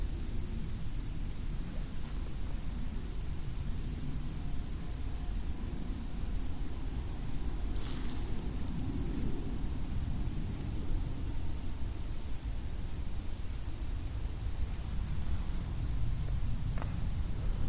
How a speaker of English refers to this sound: Oh, God, I'm sorry. It's another plane. Yeah, he keeps hearing planes.